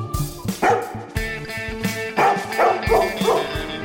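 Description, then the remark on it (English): A dog barks repeatedly in a quick, energetic series of loud yips and woofs, with short gaps between barks and no talking. “Release the hound.”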